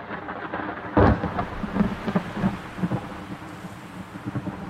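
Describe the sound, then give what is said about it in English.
A heavy storm on a remote island with steady, rushing rain and gale-force winds, a sudden loud crack of thunder early on, followed by continuous rumbling and gusty noise; no voices. “It's pretty much 24/7 gale force winds. It rains 325 days per year.”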